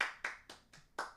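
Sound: hand clapping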